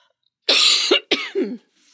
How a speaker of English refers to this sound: Yeah, I had to cough.